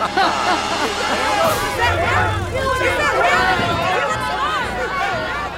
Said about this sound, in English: There's some disturbance in the crowd.